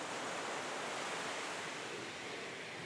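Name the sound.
beach waves and surf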